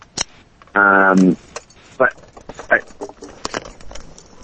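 Keys jingle and clink amid shuffling and rummaging noises as someone gets out of their car, with a short, steady electronic chime partway through, like a car's door alert.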